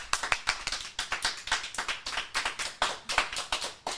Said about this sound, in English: There's so many people in the studio, and it was kind of a mild round of applause, but we're going to give you some more chances.